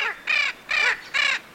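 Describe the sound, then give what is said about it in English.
Three short, raspy caws of a Spix's macaw (Little Blue Macaw), a medium-sized blue bird, ring out in an even rhythm, each harsh and loud, with brief pauses between them and no voices. “But the most characteristic feature of these macaws is their voice, a short and raspy "Caw!"”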